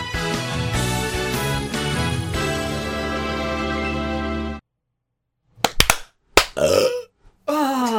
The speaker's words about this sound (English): I felt much prouder of that clap, and also the fact that I did a really big burp after it. I feel robust and refreshed.